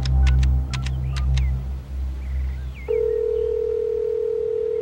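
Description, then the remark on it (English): Quick electronic beeps of a phone number being dialed by a teenager making a call in a big suburban house, then a steady, continuous telephone tone holds to the end over a low background rumble. “It opens with him, a teenager in a big suburban house, making a phone call.”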